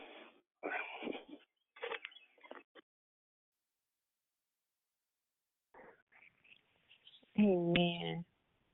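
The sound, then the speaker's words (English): Audible breaths come through an open microphone in short noisy bursts, pause into near silence, then return with a louder, wheezy, voiced exhale near the end. “I heard somebody breathing.”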